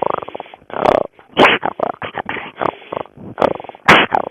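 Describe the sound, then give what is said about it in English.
A storyteller imitates a lion or bear, as done for kids in stories: a series of rough, throaty growls and roars in short bursts with brief gaps, a few louder snarling peaks standing out. “The kids really like the lion or the bear. They sound real similar, so I'll go.”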